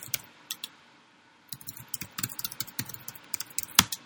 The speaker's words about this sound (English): Sorry, I'm just not talking because I'm typing and I don't want my speech to get eaten.